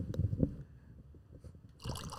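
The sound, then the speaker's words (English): Close-up water pouring and splashing in uneven, gurgling bursts, with a brighter, hissing rush of liquid swelling near the end. No one speaks. “Running waters. Waterfalls.”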